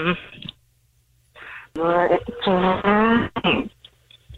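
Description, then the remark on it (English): A person vocally imitates a motorcycle coming to a stop: a buzzing, engine-like voiced rumble that wavers in pitch for a couple of seconds, then cuts off abruptly after a brief throaty burst. “That's the best motorcycle stop sound I've ever heard.”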